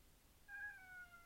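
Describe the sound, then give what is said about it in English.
A single drawn-out cat meow, fairly soft and slightly falling in pitch, heard on its own against a quiet background with no talking. “Kitty, I'm reading a childhood story. Stay here.”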